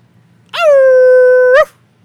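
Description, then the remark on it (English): A person imitates a dog with a single drawn-out, steady yelp lasting about a second, loud, with quiet before and after and no talking. “Maybe we ended on our best dog. Our best dog impressions”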